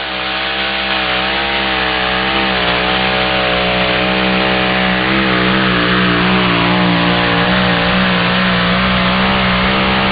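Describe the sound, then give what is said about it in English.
A drag racing car, the Little Whip, driven by Mindy Brown of Cat Spring, Texas, makes the first run down the track in the four drive division. Its engine roars at high revs without letup for ten seconds, the droning, buzzy pitch wavering and shifting. No voices are heard. “Young lady behind the wheel of the first entry here, the Little Whip, Mindy Brown, out of Cat Spring, Texas, going to take the first shot down the track in the four drive division.”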